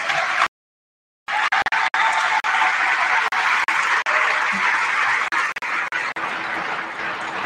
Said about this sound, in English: So a huge round of applause for all of you.